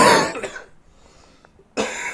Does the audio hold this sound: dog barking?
no